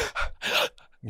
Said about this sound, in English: I know when I have that conversation, it's like, did you hear the gasp?